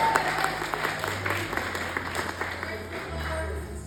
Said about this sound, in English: Clap it up for him one more time.